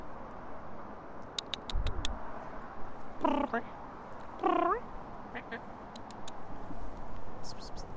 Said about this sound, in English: We just found a cat on the spring water. It's probably feral, but we're going to try to pet it anyway.